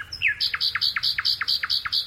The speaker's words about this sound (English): The British countryside is home to a vast array of creatures, but few whose song is quite as melodious as this nightingale, recorded by Philip Radford in Gloucestershire, England.